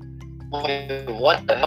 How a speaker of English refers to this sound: That's a lot of notifications.